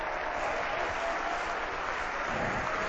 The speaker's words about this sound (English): If you're thankful Jesus is a Savior, I want you to clap your hands and give praise to the Lord.